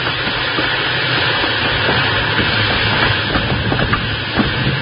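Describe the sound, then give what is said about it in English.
A steam train, running in reverse to slow down, rumbles along the rails with a loud, steady roar and hiss, faint wheel clatter running beneath it and no voices. “I'll give her all the steam you've got back.”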